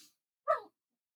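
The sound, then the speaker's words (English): A single brief, high-pitched whine or yelp from dogs wrestling and chewing on each other while playing rings out once, then fades into silence; no other sounds or voices are present. “And you can probably hear my dogs playing back.”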